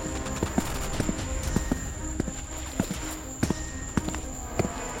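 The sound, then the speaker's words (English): Steady clip-clop of horse hooves walking, regular sharp knocks repeating about twice per second over a constant background hum, clear, with no voices. “Walking against the tide of townspeople, all of them hurrying to reinforce their fellows, I made my way back to my horse.”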